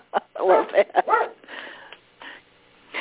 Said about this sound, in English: Oh, we just have somebody telling a voice. You know, my dog has a voice all of a sudden.